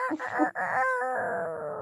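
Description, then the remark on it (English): A subdued rooster crow imitated by a human voice: one drawn-out, wavering call lasting under two seconds, with a short break early on, then a steady, slightly falling tone. “That was my quiet rooster.”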